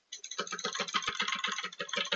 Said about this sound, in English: And I'm playing on my arcade here, so that's why you hear a lot of the banging.